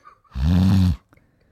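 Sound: imitated snoring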